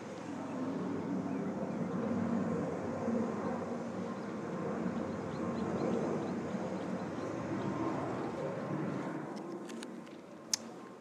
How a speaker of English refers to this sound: And now we take you to an airplane flying through the sky.